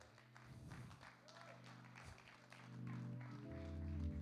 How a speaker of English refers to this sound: Preaching better than you're clapping. Come on and clap right now.